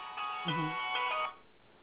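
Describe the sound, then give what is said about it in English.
A mobile phone ringtone plays a short melodic burst of bright electronic tones lasting about a second, moderately loud, then stops abruptly. “That was my bad, my phone.”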